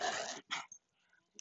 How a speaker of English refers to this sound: I'm gonna have to pick you up because you're barking too much.